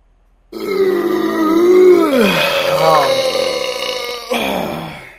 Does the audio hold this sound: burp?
yes